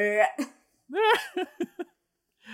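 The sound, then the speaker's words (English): A person vocally imitates Godzilla's big monster burp: a strained, rising croak, then a burst of short choppy gulping sounds, fairly loud with no other talking. “And then that's Godzilla doing his burp.”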